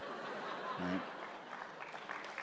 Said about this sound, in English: Oh, Jesus, don't applaud that. Like, what is that? Like, oh, white privilege, drug use, awesome. I'm going to go get high tonight. That's, no, don't applaud that. That's horrible. I mean, it's a laugh line. It's not an applause line.